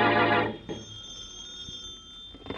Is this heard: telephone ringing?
yes